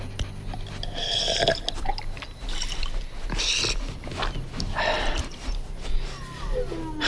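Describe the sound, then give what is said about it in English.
Water sloshes and trickles from a container that is only a quarter full, the last of the water, followed by wet gulps and swallowing sounds as someone drinks, with a few breathy pauses in between and no talking. “It's only a quarter full. Is this the last of it? Yes. Drink.”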